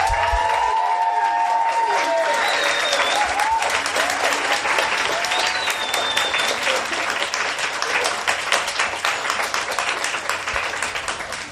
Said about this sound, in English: So before we go into that, can I just have another really large round of applause for all the speakers and also for you guys for turning up.